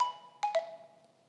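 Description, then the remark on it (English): A mobile phone ringtone goes off at a pulpit, a brief electronic melody of a few bright, bell-like notes that ring out and fade, moderately quiet with no talking. “My phone is on. Sorry.”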